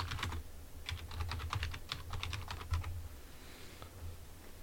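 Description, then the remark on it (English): Rapid typing on a computer keyboard into a Google search for Tom Brady draft photos, a quick run of sharp plastic clicks in uneven bursts over about three seconds, with a low hum beneath and the keys trailing off near the end. “Let me go back to Google before you start typing.”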